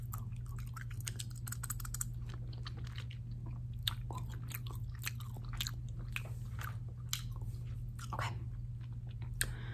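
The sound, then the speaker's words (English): Wet gum chewing with irregular soft smacks and clicks over a steady low hum, continuing for several seconds with no talking. “And I'm just gonna have a piece of gum. And if you don't like gum chewing”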